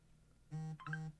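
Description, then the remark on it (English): A phone buzzes with an incoming call: two short, steady electronic buzzes separated by a brief pause, moderately loud, with no talking. “Who's buzzing in?”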